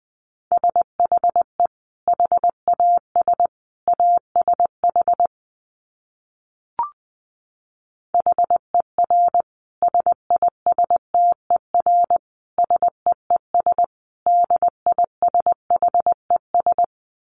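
Morse code at 20 words per minute: a steady mid-pitched tone keyed on and off in quick dots and dashes, broken by a short silent pause with a single click midway.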